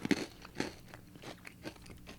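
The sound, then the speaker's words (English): Crisp crunching as someone chews a Christmas cookie, a sharp first bite followed by a steady series of softer crunchy chews, with no talking. “Chewed it on the other side, gave it a balance.”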